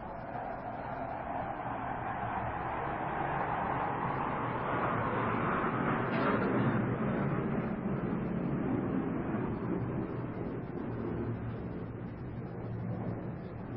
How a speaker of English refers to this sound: That aeroplane was just interacting with us.